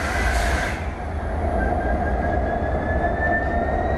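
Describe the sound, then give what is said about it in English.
A train engine starts up: a loud, steady low rumble and clatter, joined after a moment by a thin high whine that slowly climbs in pitch. No voices. “climb aboard with me. Let me just fire it up here.”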